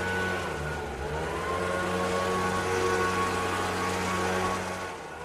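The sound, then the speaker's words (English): A gas-powered leaf blower roars steadily for several seconds, a loud rushing hiss over a low buzzing engine drone and a thin whine, easing off slightly at the end. “It's the leaf blower.”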